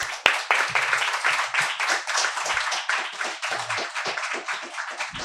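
A crowd applauds steadily for about five seconds, many hands clapping in a dense, bright wash of sharp claps that stays fairly even in loudness throughout, with no one speaking.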